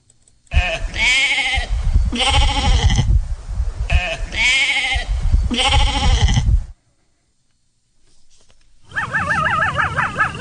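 Baby lambs bleat loudly, a few overlapping wavering cries in quick succession, followed by a brief silence before a different high, warbling call starts at the end.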